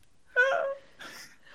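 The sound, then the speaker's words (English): A person lets out a sharp, voiced gasp with a whimpering edge, followed by a softer breathy exhale; no words are spoken. “I like gasp and cut my hands over my mouth.”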